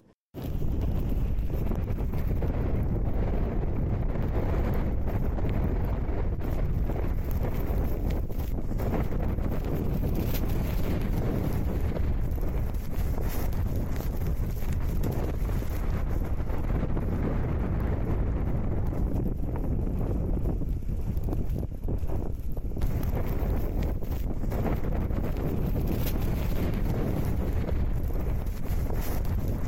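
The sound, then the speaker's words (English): Fierce storm wind funneling down a valley roars continuously, buffeting the microphone with heavy low rumbling gusts that barely let up for the whole stretch, loud, with no voices. “So that particular storm, it was funneling down a valley, and we deliberately headed into that”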